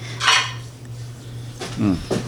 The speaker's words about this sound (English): Dishes.